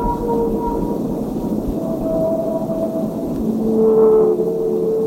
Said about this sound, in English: And we had recordings of whales singing.